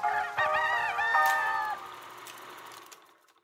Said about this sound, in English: And Pâté is still distributing films today. You may have come across their crowing rooster logo, perhaps during your own visit to the movies.